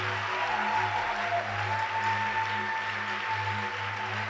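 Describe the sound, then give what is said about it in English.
A church audience at a Sunday morning service, the first Sunday of 2020, claps together in a steady, dense wash of applause that holds at an even loudness throughout, with a low sustained hum underneath and no voices. “I believe you can clap better than this.”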